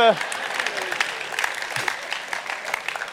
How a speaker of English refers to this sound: Oh, fair play. Round of applause.